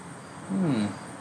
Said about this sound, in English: Those crickets? Interesting. That sound? I think that's crickets.